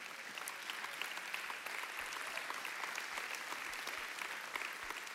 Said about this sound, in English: And again, those applause go vertical.